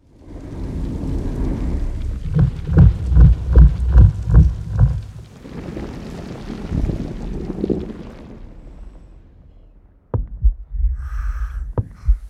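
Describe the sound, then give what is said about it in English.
A thumper device pounds out a steady rhythm of about seven heavy, low thuds over a roaring, wind-like rumble, followed later by a sharp crack and more rumbling. “It's a thumper. Someone set off a thumper.”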